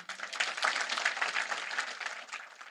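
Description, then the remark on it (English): A large crowd at a Nikki Haley rally breaks into sustained applause at her line questioning Trump's mental fitness, a dense, steady wash of clapping that holds at an even, fairly strong level for a few seconds with no voices standing out. “Now, and that was one of her biggest applause lines.”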